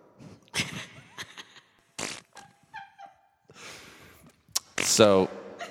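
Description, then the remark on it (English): Several sputtering fart noises come in short bursts, ending with a longer buzzy, rasping one, with breathy vocal sounds scattered between them. “Why are you doing those farts?”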